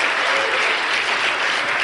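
An audience claps together in a dense, steady wash of applause that stays loud and even for about two seconds, with no voices rising above it.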